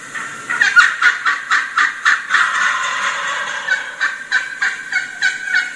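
A wild turkey gobbler, coming closer and closer, gobbles in a rapid, rattling series of pulses, a loud warbling burst swelling midway, then more quick repeated notes; clear with no talking.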